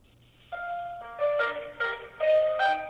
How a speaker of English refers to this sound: Okay, so there's hold music and there's a phone tree. This all feels very like the most normal thing in the world.